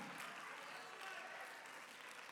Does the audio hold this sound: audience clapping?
yes